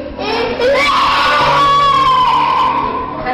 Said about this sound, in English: People, you know, just screaming and writhing in convulsions. And from the virus's perspective, it's trying to drive its host to be more aggressive so that it bites somebody else and spreads more virus.